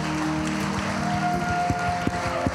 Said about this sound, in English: Come on and give him a hand clap of praise in this house.